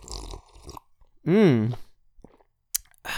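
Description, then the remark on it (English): Mouth noises of someone sipping and gulping coffee, with one loud, throaty, voiced gulp in the middle, followed by quieter smacks and a brief click. “Let me take a sip of this coffee real quick.”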